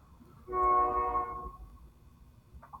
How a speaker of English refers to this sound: Train. Not sure. You already heard that, did you? Yes, I heard that.